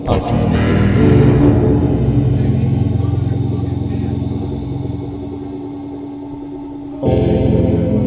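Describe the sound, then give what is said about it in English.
Deep, throaty Jeep Wrangler engines rumble steadily outside, swelling with a revving surge early on, settling into a low idling drone, then picking up loudly again near the end. “Fucking guys trying to come in their fucking Wranglers out there.”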